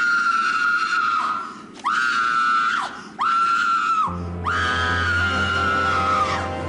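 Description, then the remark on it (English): A woman screams loudly in a TV drama clip, four long, shrill wails in a row, each trailing off before the next, the last one longest, with a low drone entering underneath. “And to be honest, I was actually surprised that the person was the murderer who was the murderer, because I just thought that they'd earn all of their wages right at the beginning, with very amazing screaming.”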